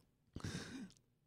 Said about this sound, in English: Excuse my coughing.